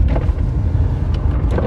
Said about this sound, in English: There we go, pickup truck there for a second. I thought he was going to just come right at us.